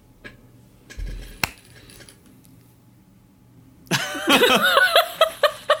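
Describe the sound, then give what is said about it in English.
One sharp, isolated hand clap, made to sync audio, cracks through a quiet background, and a few seconds later voices break into laughter while several more crisp claps land in quick succession. “Okay. Well, let's clap sync.”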